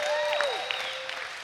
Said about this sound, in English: Come on, we like to applaud.